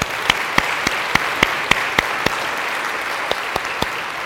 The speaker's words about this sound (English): Congratulations. I'm going to applaud y'all being here today.